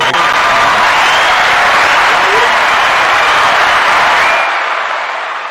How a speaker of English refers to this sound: One guy's clap.